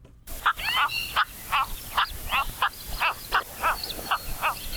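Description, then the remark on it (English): Cattle egrets calling: a rapid series of about ten raspy, croaking calls over a steady low background hum, with no talking. “We've got the calls of the sleek but sometimes clumsy cattle egret for you today”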